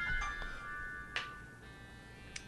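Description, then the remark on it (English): A mobile phone ringtone from a large phone with an incoming call left unanswered plays steadily, a sustained electronic melody of bright stacked tones, with a few brief clicks and soft background rustle underneath and no voices. “It's Maureen. I can't answer it. No, don't answer it right now.”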